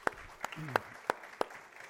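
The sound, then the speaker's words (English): A handful of sharp, isolated claps, about five spaced unevenly across two seconds, as someone starts clapping to welcome a returning attendee at a morning gathering and trails off, with a faint murmur of voices underneath. “Yeah, I heard somebody about to clap.”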